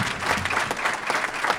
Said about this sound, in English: And you ought to give yourself a round of applause. That is unbelievable.